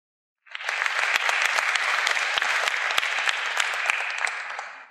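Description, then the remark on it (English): A crowd applauds steadily for several seconds, a dense wash of many hands clapping with sharp individual claps popping out, starting suddenly and holding at an even, fairly loud level with no talking. “Let's give everybody a round of applause there.”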